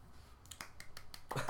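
A short run of hand clapping, about six quick, sharp claps in an uneven rhythm, fairly soft at first and getting a little louder at the end, with no talking.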